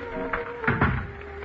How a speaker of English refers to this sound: And I locked the door behind me.